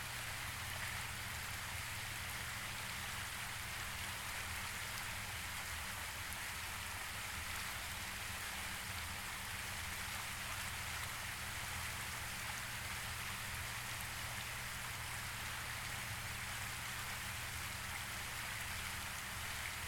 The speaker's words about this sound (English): As soon as you become aware that your mind has wandered off, simply notice and bring it back to focusing on the sound of the water.